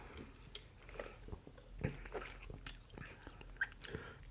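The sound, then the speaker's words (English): Quiet mouth sounds of someone swigging Cherry Coke Zero Sugar soda: irregular wet gulps, swallows and lip smacks scattered over a few seconds, with no talking. “Cherry, I mean, take a swig. Tell me what you think. You know, get a good gulp.”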